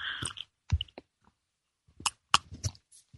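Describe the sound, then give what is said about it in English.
Someone sips tea, with a few short slurps and soft clicks in two quiet clusters separated by a pause, no talking. “Time for me to sip a little tea here.”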